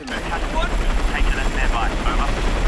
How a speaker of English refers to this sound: I mean, there's maybe we could play the third clip here, where I think the clip speaks for itself. It's a failed helicopter rescue attempt. Yeah, it's a failed helicopter rescue attempt.